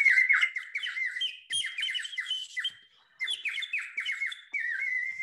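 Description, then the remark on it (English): A water-filled whistle warbles in bursts of rapid, high, trilling chirps, convincingly birdlike, with a brief pause midway before the bubbling song resumes, fairly loud and alone. “oh, here it is. It needs water in it.”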